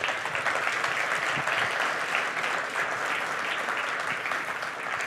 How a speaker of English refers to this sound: Come on, give God some praise. Clap your hands, give God praise.